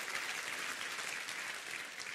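A church audience claps their hands together in praise of God during a sermon, a dense, continuous burst of applause that holds steady and fairly loud for a couple of seconds, with no voices standing out.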